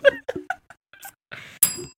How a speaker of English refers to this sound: The way your bells ring when you shake your head is terrifying.